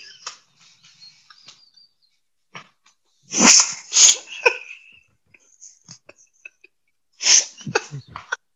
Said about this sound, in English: Because you, me, and he's sneezing.